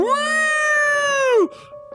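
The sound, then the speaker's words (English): A human voice imitates a whale call: one long, loud, high-pitched moan that swoops up, holds steady, then slides down and cuts off, followed by a quieter, fainter echo of the tone. “Was that a whale sound?”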